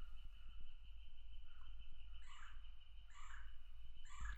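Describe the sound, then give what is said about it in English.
A steady, rapid tapping of a woodpecker knocking on wood runs throughout, while bright birds chirp in short bursts in a forest around a home. No one speaks. “You hear the woodpecker?”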